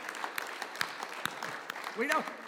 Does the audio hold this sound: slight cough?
no